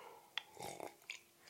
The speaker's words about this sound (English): I don't think that sounds good on the mic, does it? The slurp.